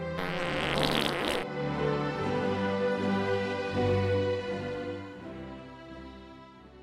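A loud fart sound: a short sputtering blast, then a long, drawn-out buzzy rumble that wavers in pitch for several seconds before fading, with no talking.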